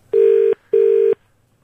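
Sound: telephone dialing and ringing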